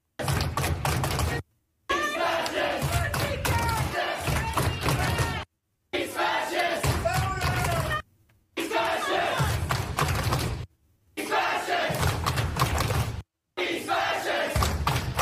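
A crowd of protesters yells and shouts together, many loud overlapping voices with rising and falling cries, heard in several long bursts broken by short gaps of silence.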